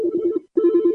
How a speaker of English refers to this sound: Your phone's going. Do you think it's something important? Do you want to answer? So repeat? Do you want to answer the phone? Because I hear it going in the background there.